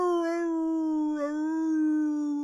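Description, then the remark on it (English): A person imitates a dog's howl from a film scene, holding one long, steady, loud wail with a slight dip in the middle, with no other sounds. “Max comes in, kicks the door closed, and then we just hear an epic sexual howl.”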